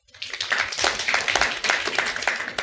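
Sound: audience clapping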